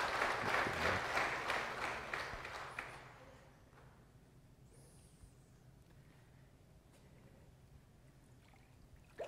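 A crowd claps together in a loud burst of applause that lasts about three seconds, then quickly fades into a quiet room hum with faint rustling.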